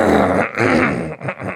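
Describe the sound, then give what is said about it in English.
A person coughs several times in quick succession: loud, harsh, raspy bursts, the first two long and throaty, followed by shorter hacks, with no talking. “quit coughing.”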